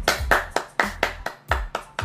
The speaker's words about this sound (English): Let me go ahead and clap.